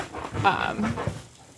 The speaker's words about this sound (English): Dog, stop it. Shirley's attacking things over there.